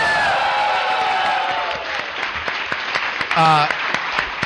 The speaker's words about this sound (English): By the way, clap and cheer for those guys.